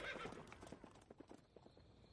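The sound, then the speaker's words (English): Horse hooves pound in a quick, uneven galloping rhythm, steady in loudness, as a horse carrying two riders speeds off, over a rough noisy background, with a brief bright burst at the very start. “Bodwig on horseback is cruising down the main avenue.”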